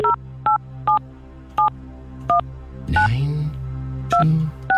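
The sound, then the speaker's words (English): A phone number being keyed in for a Cork's 96 FM radio call to a listener: a string of about eight short, clear touch-tone beeps at uneven intervals, with a brief rustle of line noise partway through and no voices. “9, 2, 7 Okay. Now. We're ringing.”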